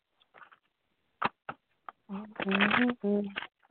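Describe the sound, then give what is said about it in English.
A deck of cards being shuffled: a soft riffling patter, then a few crisp, separate snaps of cards. A person's voice follows near the end. “I'm going to shuffle.”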